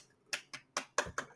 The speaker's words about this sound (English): We're clapping.